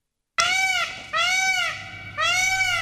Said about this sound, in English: That, my friends, is the sound of a peacock.